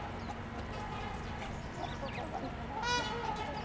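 One of two trumpeter swans gives a single brassy, nasal honk near the end, over a steady background of chattering and chirping birds outdoors, among them house sparrows, Canada geese and a black-capped chickadee, heard on a walk.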